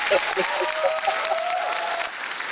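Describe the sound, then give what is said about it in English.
A big round of applause: dense, steady clapping from a crowd, with cheering voices and a rising whoop mixed in, holding at an even loud level throughout. “Big round of applause.”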